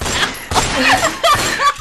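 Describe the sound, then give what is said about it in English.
A gunshot sound effect with several sharp, loud blasts spaced about half a second apart, each followed by a short ringing tail and some whining, ricochet-like tones. “Can you please edit in gunshot noise?”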